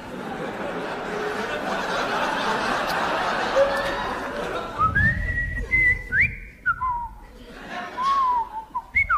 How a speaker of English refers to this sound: I will now whistle the soliloquy from Hamlet.